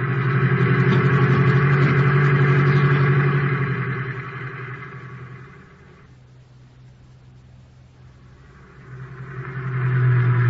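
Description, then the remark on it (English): A taxi cab engine runs with a steady, throaty, loud hum, then drops away briefly before revving back up to full strength. No one speaks. “Now quit making with the jokes and start making with that gas pedal.”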